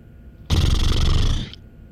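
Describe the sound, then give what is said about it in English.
A single sustained lip-flapping burst, about a second long, buzzy and fluttering with a rough low rumble, loud and alone with no talking, just short of a full raspberry. “… makes a lip-flapping sound. Not quite a raspberry.”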